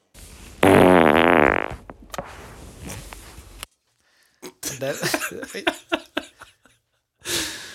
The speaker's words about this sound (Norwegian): jeg hadde kanskje litt travlt med den fisen